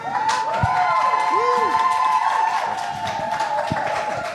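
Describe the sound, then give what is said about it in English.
A live audience at a poetry event claps and cheers steadily for a poet throughout, with scattered whoops and shouted voices rising over a dense wash of applause. “And keep that applause going for our second poet of the evening.”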